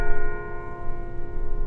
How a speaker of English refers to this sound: Producer Hans Ng says that's the Curry Commons bell tower, and it has a unique history.